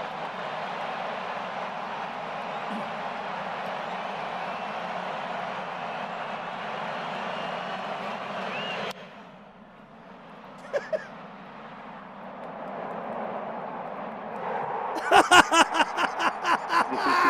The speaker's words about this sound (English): you heard the crowd roar, and then you heard the crack of the bat, and it went dead silence. 46,000 people went dead silent, and then Rojas makes the catch, and that was just—I mean, that was phenomenal.